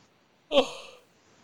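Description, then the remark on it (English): A single short, breathy yawn-like exhale, voiced at first and trailing off into breath over about half a second, with silence on either side. “yawning.”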